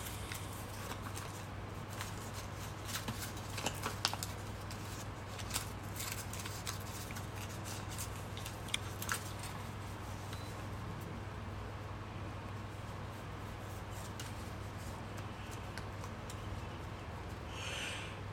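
Paper packaging and documentation being rummaged through while looking for what seems to be a SIM card, with steady crinkling and rustling and scattered sharper crackles, continuing throughout over a low, constant background hum. No one speaks.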